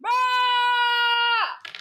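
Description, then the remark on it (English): A person lets out one loud, sustained scream, held steady for about a second and a half before it drops away, followed by a brief burst of noise. “Start screaming.”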